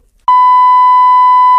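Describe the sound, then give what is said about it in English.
A loud, steady censor bleep over a phone number, a pure tone held for over a second after a brief silence, starts abruptly and cuts off sharply with no voices heard over it. “You could beep that. I can beep the beep.”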